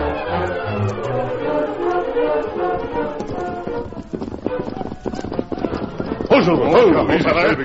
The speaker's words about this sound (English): From out of the past come the thundering hoofbeats of the great horse Silver. The Lone Ranger rides again.